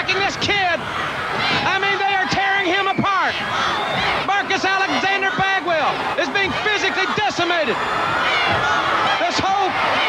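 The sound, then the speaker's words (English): At a wrestling event, loud, repeated heavy slams and thuds land in quick succession as wrestlers hammer an opponent on the mat, amid a roaring, shouting crowd that shakes the whole place, with voices yelling over the impacts throughout. “They're hammering this kid, breaking him apart.”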